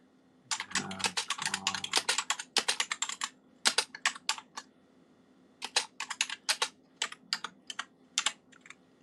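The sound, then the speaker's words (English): Rapid keyboard typing: bursts of sharp clicking keystrokes in quick irregular runs, with a brief pause partway through, then more scattered clacks. No one speaks. “Sorry about the typing noises.”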